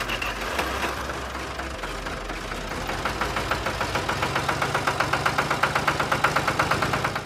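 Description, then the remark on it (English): A vintage red International Harvester farm tractor, won in 1979 at the Red Power Sweepstakes, idles, its steady, loping chug thumping in an even rhythm that grows slightly louder and more distinct after a few seconds, with no voices. “this tractor is world famous, and he's going to tell us the story.”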